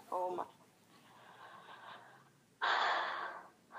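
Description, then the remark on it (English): Labored, heavy breathing: a short voiced gasp, a quieter drawn-out breath, then a loud, rough rush of air as someone struggles for breath. “I'm still struggling to breathe.”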